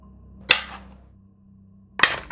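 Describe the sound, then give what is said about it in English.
Metal dice rolled for an investigation check in a tabletop role-playing game strike a hard tabletop twice, about a second and a half apart, each a sharp, bright clack with a short metallic ring, over a low steady hum and no voices. “With my metal dice.”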